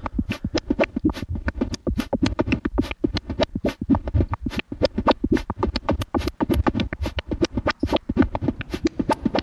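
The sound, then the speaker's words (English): A dry synthesizer sequence run through the Alter filter from Ritual Electronics, frequency turned down and resonance turned up, with no effects: rapid, staccato plucked notes in a steady, driving rhythm, buzzy and bright, with no one speaking over it. “Let me just take the effects out so you can get a sense of what the filter is doing.”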